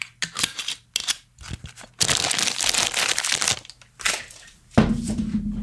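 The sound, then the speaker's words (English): Loud crinkling and crumpling of a paper bag from a liquor store in several bursts, with a longer continuous rustle in the middle and a low hum joining near the end, in a room in Raleigh, North Carolina. “Still paper bagging it from the liquor store.”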